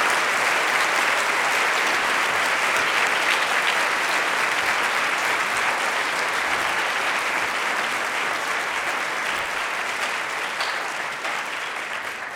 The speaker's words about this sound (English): Let's give them a hand clap of appreciation and celebration.